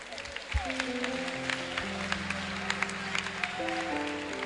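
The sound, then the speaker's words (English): An audience claps steadily, a dense patter of hand claps with scattered sharper smacks, running under sustained low keyboard-like tones that shift pitch a few times. “I thought you clap for yourselves.”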